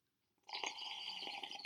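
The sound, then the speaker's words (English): A loud, drawn-out slurping sip of chamomile tea begins after a brief silence and continues steadily for over a second, airy and hissy with no talking. “You want to go ahead and give a loud sip there”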